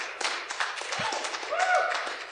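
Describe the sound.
A crowd claps in a dense, steady burst of applause for a couple of seconds, with scattered voices and cheers mixed into the noise.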